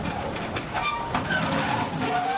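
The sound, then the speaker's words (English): A train rolls along the rails with a steady, loud rumble, punctuated by a few sharp clacks from the wheels and faint metallic squeals, with no voices. “Every day, state and private ferries shuttle 34 trains, 3,300 trucks, 6,300 cars, and over 12,000 pedestrian commuters across the Straits of Messina, between Sicily and Calabria on the mainland.”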